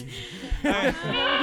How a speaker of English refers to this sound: What the hell? What are you doing to the goat?